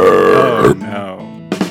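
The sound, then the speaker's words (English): A loud, drawn-out burp with a throaty, buzzing tone that fades and wavers, ending in a brief second gurgly burst. No one speaks. “And the other sex worker looked at her and said, No, I just burped.”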